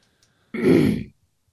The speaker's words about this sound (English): Let me clear my throat.